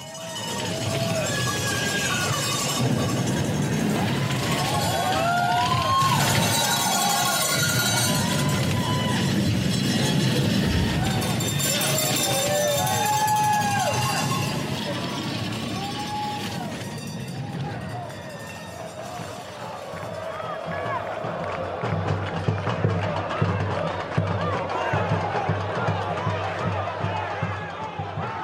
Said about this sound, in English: Like a piece of music that if you just sit and listen to the crowd, you hear like how it swells and dives and peaks and then suddenly bursts. It sounds to me like an orchestra.